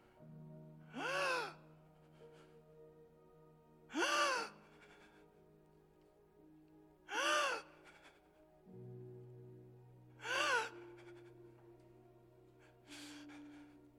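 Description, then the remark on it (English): A person imitates gasping for air: five loud, strained, raspy gasps spaced a few seconds apart, over a low steady background drone. “Gasping for air.”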